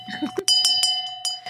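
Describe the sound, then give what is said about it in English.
A handbell used as a shame bell sound effect clangs sharply four or five times in a steady, deliberate rhythm, each strike ringing bright, with a voice murmuring briefly at the start and end. “Yeah, where's the Shane Bell?”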